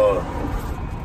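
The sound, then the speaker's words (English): Car traffic rumbles past, a steady low roar of road noise filling the moment, with a brief voice-like tone at the very start. “Sorry, I'm just trying not to get hit by a car here.”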